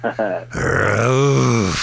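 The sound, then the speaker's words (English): Leo the Lion roars in the MGM logo: two short, throaty growls, then a loud, sustained, rasping roar that wavers in pitch for over a second before cutting off. “There he is, coked out of his mind, Leo the Lion.”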